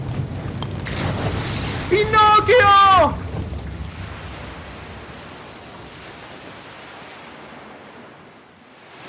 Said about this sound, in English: And the waves are so high, and the wind is so strong, and he's trying and trying to keep us afloat, but the boat is already so damaged from going under.